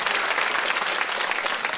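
An audience breaks into a steady round of applause to vote for a candidate for the Fair Cop Award, dense, even clapping filling the whole stretch at a fairly loud level with no voices heard over it.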